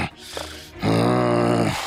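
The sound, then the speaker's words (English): A person voices a low, rumbling dog growl, imitating an animal: a quieter grumble first, then one loud, sustained snarl held for about a second. “Is dog.”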